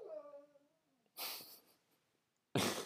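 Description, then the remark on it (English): A dog makes a soft, falling whimper, then gives two sharp, breathy huffs separated by a short pause, all fairly quiet; the dog is awake, not sleeping. “Good old dog. I don't know what he's doing. He's making noise.”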